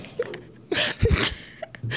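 A short, low, croaky burp rumbles out amid a few breathy, hiccup-like noises, with no talking.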